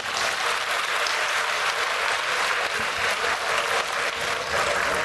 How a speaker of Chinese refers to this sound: 让我们大家再次以热烈的掌声，感谢我们的索达吉堪布。